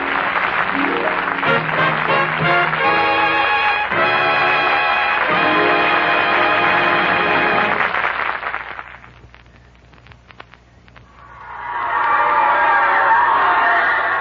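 Loud audience cheering and applause fill the first eight seconds, die down to a brief lull, then surge back just as strongly for the final few seconds.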